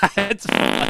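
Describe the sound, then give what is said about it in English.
A loud 'fart in church' sound effect: a couple of short buzzy blurts followed by a longer, rasping blast that rings out with a hollow, echoing quality. No one speaks. “That's the fart in church to echo.”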